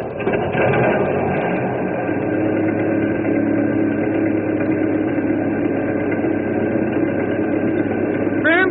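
An old river ferry boat engine rumbles loudly and steadily, cranking over briefly at the start and then settling into a constant low idle that drones on.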